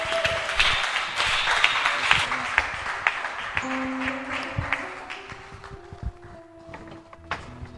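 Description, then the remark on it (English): An audience claps their hands in a dense burst of applause that gradually thins out into scattered claps, while faint sustained tones emerge in the background. “Oh, I was expecting the hand clap to keep ringing.”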